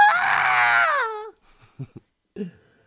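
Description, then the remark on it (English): A loud, piercing shriek sound effect introducing the segment 'Shriek of the Week' rings out for about a second, sliding downward in pitch as it ends, followed by a few short, quieter thumps. “All right, so now it's time for Shriek of the Week.”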